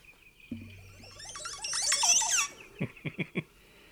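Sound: montezuma oropendola call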